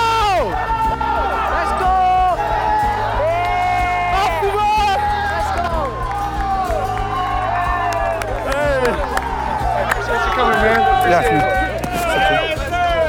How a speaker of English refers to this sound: I could tell he loved that. Just having all the players yell his name. Knowing why he's here, I think it means a lot.